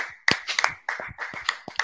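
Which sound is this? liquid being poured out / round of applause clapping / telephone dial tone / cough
round of applause clapping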